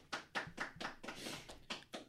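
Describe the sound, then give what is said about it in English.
A small, brief round of hand clapping on the Handsome Hour program, roughly eight quick claps in an uneven rhythm, fairly quiet, with a short burst of overlapping claps in the middle. “Round of applause.”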